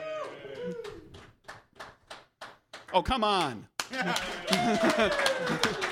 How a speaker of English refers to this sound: I appreciate just because it's his second time. I appreciate the pity claps.